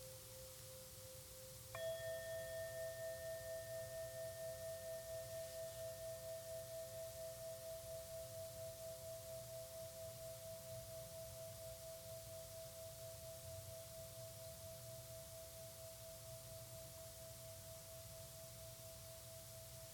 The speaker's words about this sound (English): In a moment, there will be a bell that signals the end of the meditation. When you can't hear the bell any longer, open your eyes.